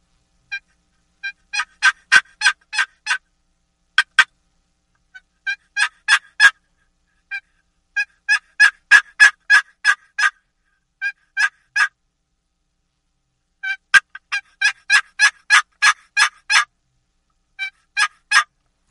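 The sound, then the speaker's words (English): A wooden box call produces a series of raspy plain hen turkey yelps in several rhythmic runs of notes, loud, with brief pauses between sequences and no talking. “Same way with the hen yelp, I'm going to pick up a box call, and I'm going to do a plain hen yelp with the box call.”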